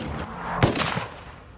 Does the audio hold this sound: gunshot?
yes